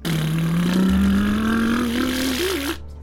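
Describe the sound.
A person vocally imitates a car engine accelerating: a loud, buzzy drone that climbs steadily in pitch for about three seconds, wobbling briefly before it cuts off.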